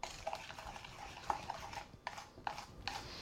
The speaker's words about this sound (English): Make a dressing out of it. This is your coleslaw dressing. Once it's all stirred up, actually I would stir it a little bit for a few minutes to kind of get that sugar to maybe start to dissolve a little bit.